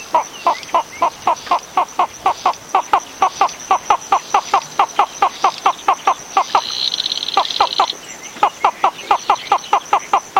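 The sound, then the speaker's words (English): A flufftail from Madagascar calls in a rapid, even series of short hooting notes, briefly broken by a buzzy, higher-pitched trill before the steady pulsing resumes. It is fairly loud, with no voices. “Both flufftail calls are on the British Library CD, …”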